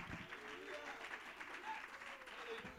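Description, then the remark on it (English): An audience claps steadily for a few seconds, the applause dense and sustained, with scattered voices calling out praise to God over it. “Oh, somebody ought to clap your hands and give God a shout of praise.”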